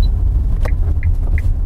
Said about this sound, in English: Okay, I'm going to put the recorder down now and concentrate. Excuse me. I am driving, you know.